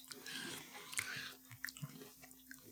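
Crisp crunching and wet chewing of a Heath toffee candy bar, irregular bites and mouth noises in quick succession, with a low steady hum underneath.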